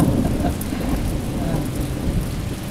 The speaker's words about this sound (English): A persistent rain. A persistent, consistent, marvelous rain.